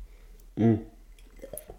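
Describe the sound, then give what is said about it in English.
A single short, loud slurping sip of tea lasting about a quarter second, followed by a few faint, soft clicks and rustles. “Just sipping my tea live for anyone on the podcast.”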